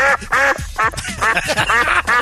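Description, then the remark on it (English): A viola played badly, its scratchy, nasal bow strokes sounding like the quacks of a drake mallard duck: about six loud, squawking bursts in quick, uneven succession, with no talking. “Makes her viola sound like a Drake, Mallard duck.”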